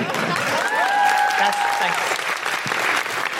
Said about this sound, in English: Thank you so much. Feel free to applaud or don't. Or don't.